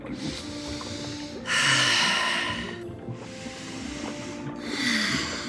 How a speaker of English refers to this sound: Try breathing 8 times every minute. Like this.